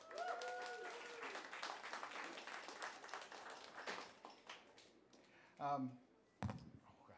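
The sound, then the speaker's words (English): An audience at a club event breaks into steady, dense applause for the club staff that carries on for several seconds, then thins out and fades. A brief voice or two can be heard as the clapping dies down. “Give them all a hand, please.”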